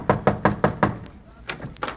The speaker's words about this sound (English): Here we are. Knock on the door.